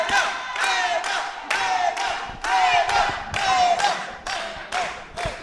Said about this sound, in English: What other conference will you go to where you have a bunch of people cheering each other like this? This is so invigorating. It's prideful. It's energizing.